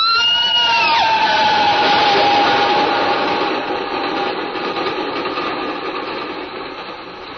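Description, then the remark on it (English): A train rumbles past, a steady roar of wheels and engine with a thin high squeal sliding downward early on, the noise easing slightly toward the end. “Why does the train frighten you so?”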